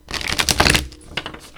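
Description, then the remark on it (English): A quick, dense burst of papery clicking and riffling as a deck of cards is shuffled before three cards are pulled, fading after a moment into a few soft scattered taps. “So we'll do a little shuffle and then we'll pull.”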